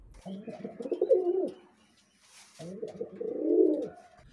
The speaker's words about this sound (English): When you can stare in only one direction, and that's northeast, it's handy to have a pigeon for a pal.